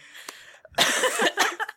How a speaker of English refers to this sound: I'm sorry I'm coughing so much, everyone.